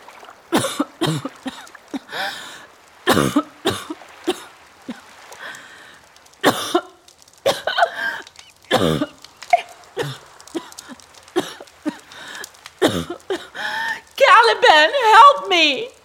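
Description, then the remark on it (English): A long fit of harsh, violent coughing by the character Ariel in a one-act verse play riffing on Shakespeare's The Tempest, a dozen or more loud hacks in irregular bursts with short gasps between, ending in strained, rasping vocal sounds. “Why do you cough so violently, Ariel?”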